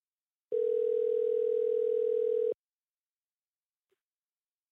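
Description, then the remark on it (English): A single steady telephone tone drones for about two seconds, clear, then cuts off abruptly into silence, like a ringback while a call is placed to a guest. No voices are heard. “We have a dog we're going to get on the phone here. Dial him up.”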